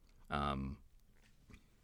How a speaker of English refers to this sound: I took a sip of water and it, like, went the wrong way. So I'm still recovering from whatever that was.